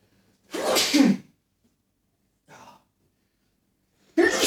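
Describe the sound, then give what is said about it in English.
A loud sneeze bursts out, followed a moment later by a faint breathy exhale and then the start of another forceful sneeze-like burst at the end. “Bless you.”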